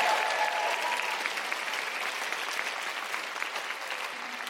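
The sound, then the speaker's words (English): An audience applauds steadily, a dense crackle of many hands clapping at an even loudness throughout, tapering only slightly toward the end with no voices over it. “Big round of applause”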